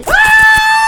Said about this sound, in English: Does the ASMR you listen to typically end in... A yell. Only mine. A throaty yell.